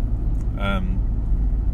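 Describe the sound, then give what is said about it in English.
A steady, loud low rumble fills the inside of a car loaded with junk as it is driven to a shop, the engine droning constantly throughout, with a brief voiced sound rising over it near the start. “So we've got like a whole range of junk just in my car, and I got into the car.”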